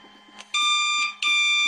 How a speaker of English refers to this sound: Remember, it was really annoying. A truly awful sound. Robin, the bat phone is ringing.